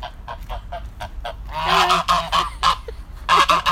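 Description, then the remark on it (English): Several geese kept next to chickens honk, their nasal, overlapping calls rising into a loud cluster after a series of short, rhythmic clucks and rustles at the start. “Just come on a little walk to see if I can find the geese today.”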